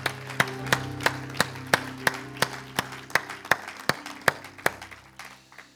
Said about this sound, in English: Give the Lord a hand clap of praise in the house today.